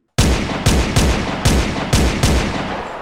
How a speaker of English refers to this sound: gunfire! They were shooting at him! These guys couldn't hit... Yikes! That was close!